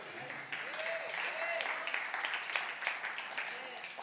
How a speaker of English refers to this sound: So it's really good. Okay, well, that's good. We clap for that. That's good.